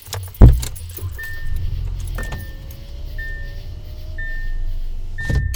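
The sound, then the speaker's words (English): Car keys jangle, followed by a car engine rumbling low and steady while a repeated electronic chime beeps at intervals. “Y'all are just gonna have to deal with the sounds from my car, because I am not doing that.”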